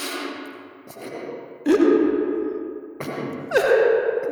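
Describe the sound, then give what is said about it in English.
Echoing sniffles and weeping fill a chamber: breathy, wet intakes and two rising, wavering sobs that each trail off in a long reverberant wash, with no talking. “And the chamber is filled with the echoing sounds of sniffling and weeping.”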